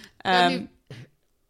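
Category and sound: human body sound, coughing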